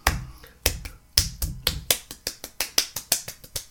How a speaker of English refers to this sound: Self clap. Self applause. World's fastest.